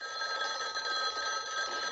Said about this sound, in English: Your phone's ringing.